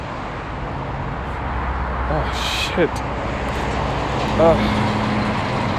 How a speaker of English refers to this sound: Damn, where all these cars came from? It's so loud.